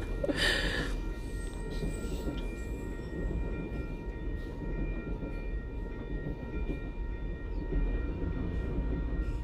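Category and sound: vehicle, train passing on rails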